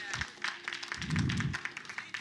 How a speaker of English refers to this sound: Y'all clap. Yeah. Y'all can clap.